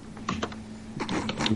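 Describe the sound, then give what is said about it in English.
Quick bursts of typing on a computer keyboard, two short flurries of crisp clicks separated by a brief pause, fairly quiet over a steady low hum, with no voices. “What are you doing? Crimes. Drugs. Typing.”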